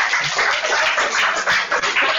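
An audience of mostly university students claps together in a steady, dense burst of applause that holds at an even loudness for a couple of seconds, with no voices standing out.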